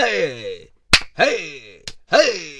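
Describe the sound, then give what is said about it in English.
Three sharp, loud slaps to the face land about a second apart, each followed by a drawn-out pained groan from a voice, the cries sliding up and down between the smacks. “Slap to the face.”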